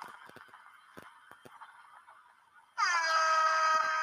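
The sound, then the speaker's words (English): A loud, blaring air horn bursts in partway through, a sustained harmonic-rich blast that holds steady to the end after a quieter stretch of faint background noise and clicks. “No, actually, let's give it a little air horn for this.”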